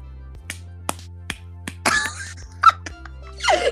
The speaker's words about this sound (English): Are you clapping? Thank you. Oh, I'm hitting my head, my forehead.